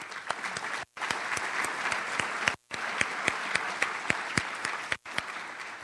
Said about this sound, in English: So just a big thank you and applause to our governor.